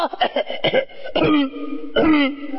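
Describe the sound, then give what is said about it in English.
A voice imitates a rough, croaky colicky cough: several short throaty bursts in quick succession, then a longer strained hack and a final harsh cough, fairly loud. “That's that colicky cough.”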